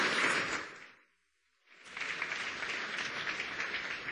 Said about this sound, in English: I'd like to ask the mayor of San Francisco, Mr. Ed Lee. Everyone give him a warm round of applause.